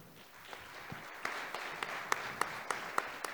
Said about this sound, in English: Would you give them another round of applause?